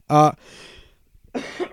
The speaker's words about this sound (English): Yes, the cough is still here. It will never escape us.